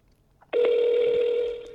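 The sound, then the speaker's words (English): A telephone ringback tone: one steady, buzzy electronic tone that starts abruptly and holds for just over a second before easing off, fairly loud, with no voices. “Nigga, if you don't answer the phone.”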